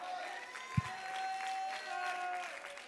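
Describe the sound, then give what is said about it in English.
Light, scattered clapping from an audience, a soft steady patter of many hands over a sustained keyboard tone, with one brief low thump early on. “25% clapping.”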